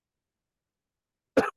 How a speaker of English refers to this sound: Oh, excuse me. All good. It's there. Now it's contagious. Yeah, now we're both coughing.